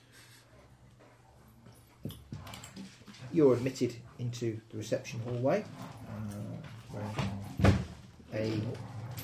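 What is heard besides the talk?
dogs fighting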